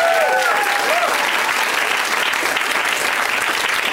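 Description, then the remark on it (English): An audience bursts into steady, loud applause for one of its members, a dense wash of clapping that holds for several seconds, with a few faint whistles or cheers rising over it at the start. “First of all, clap for this person”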